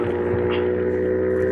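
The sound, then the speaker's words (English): A motorbike engine drones steadily and loudly throughout, a constant low hum with strong harmonic tones, heard over a phone line from a caller on a motorbike. “Sounds like you're on a motorbike.”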